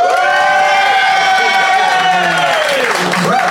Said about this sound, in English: But if you think BT and Fanshawe won the day, applaud now.